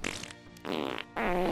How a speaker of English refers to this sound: Wow, so many different farts.